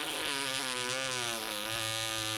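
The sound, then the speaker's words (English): A long, buzzy fart rasps on for a couple of seconds, its low pitch wobbling slightly while the loudness stays steady, with no voices over it. “I don't think anyone wants to buy my farts”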